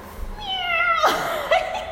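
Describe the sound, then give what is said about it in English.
A woman imitates a cat with a drawn-out, wavering meow, followed by a brief second squeak, fairly loud, with no other talking. “And then she'd go to the cat.”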